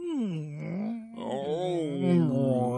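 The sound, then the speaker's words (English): A human voice imitates whale song: long, continuous moaning tones that glide slowly down and up in pitch, rich in harmonics, with a brief dip partway through before the wavering call resumes. “Oh, whale sounds. Whale sounds. That's what I heard.”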